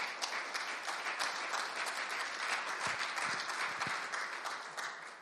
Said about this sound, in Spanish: Denle fuerte aplauso a Él.